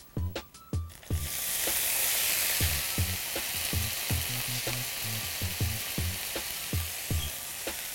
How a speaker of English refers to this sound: I'm going to add 2 cloves of garlic. And 1/4 teaspoon of dried red chili. You can use 1 fresh red chili too, or no red chili. As soon as my garlic is just golden, I'm going to begin adding my broccoli to the frying pan.